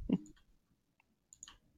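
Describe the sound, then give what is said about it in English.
A handful of sharp, clacky clicks from a computer keyboard and mouse, tapped in irregular little bursts with quiet pauses between them and no voices. “Are you playing a game? Maybe. Because I can super hear it.”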